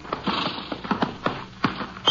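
Horse hooves clip-clop in an uneven walking rhythm, about a dozen sharp knocks over two seconds, moderately loud with no voices; Texas Rangers' horses unloaded in the afternoon at Eagle Flat in Hudspeth County, Texas.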